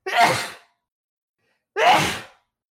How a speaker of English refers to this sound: Hold on, I'm gonna sneeze.